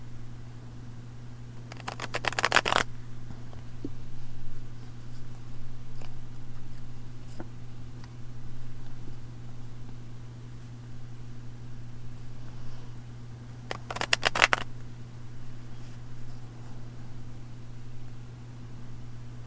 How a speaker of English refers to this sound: So as I was shuffling, there was a card at the top that I felt compelled to put to the side, and I flipped it over, and it's the Tower, Thunderbolt.